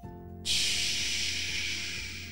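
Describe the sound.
A voice imitates pouring rain with a steady, loud, breathy hiss that starts abruptly and holds for about two seconds, slowly fading slightly toward the end.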